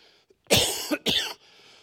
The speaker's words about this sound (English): Please forgive my cough. If it doesn't bother you, it won't bother me.